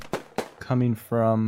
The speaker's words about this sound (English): You guys hear an outrageous amount of gunfire.